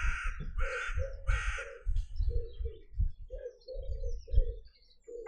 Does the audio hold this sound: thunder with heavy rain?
no